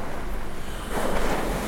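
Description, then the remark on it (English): Steady ocean surf washes onto a beach, a broad rushing roar that swells slightly near the end, with a breezy, wind-touched texture and no voices. “…”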